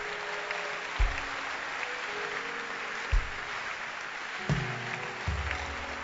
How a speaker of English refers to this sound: Stand to your feet as we close. Keep clapping your hands as we close.